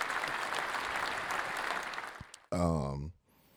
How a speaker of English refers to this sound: Soccer is finally over for both kids. Hey, that deserves a round of applause.